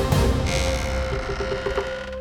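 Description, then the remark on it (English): A wooden door creaks open slowly, a drawn-out groaning squeak with a few stuttering pulses near the end, fairly loud with no voices. “He stepped through her doors, and his mouth fell open in shock.”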